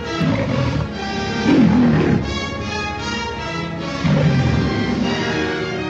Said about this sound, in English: As the rumor goes, or at least as I heard it, if you press play right at that third roar of the MGM lion, the album and the film will sync up